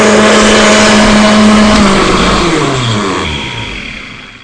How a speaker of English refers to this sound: able to hear me because of all the noise from this blender. And that's the point.